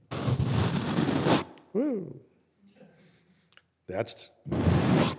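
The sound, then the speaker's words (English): A voice imitates the sound of a dead body floating down a river: a long, breathy, loud whoosh, then a brief spoken exclamation and a few words before a second rushing whoosh. “the sound of a dead body floating down the river.”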